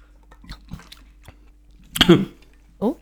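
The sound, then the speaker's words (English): Soft mouth noises of sipping and swallowing a rum cocktail, then a sudden sputtering cough-like burst and a short voiced gasp, as if the drink went down the wrong way. “Yeah, just swallowed a bit.”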